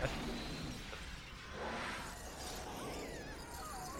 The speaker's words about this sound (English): I mean, come on. These people are sitting a foot from that flying glass.